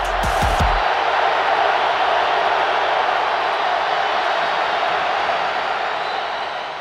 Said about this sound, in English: Well, you know, there's no question crowd noise can impact the game. You can feel the electricity of a stadium when it's on your side. You can feel the negative electricity when it's against you.